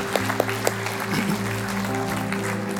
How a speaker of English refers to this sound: Let's applaud those who said yes to Jesus today. We celebrate you.